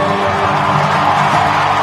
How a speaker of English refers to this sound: Sounds like they're cheering. And I'd have to say Adam Wainwright was very brave.